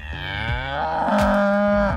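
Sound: cow mooing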